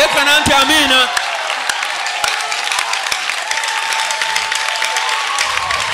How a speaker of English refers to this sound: Praise God. Shout amen. Give God a high clap.